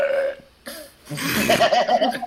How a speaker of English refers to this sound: Oh, did I burp? No, right? That was me. She doesn't even know.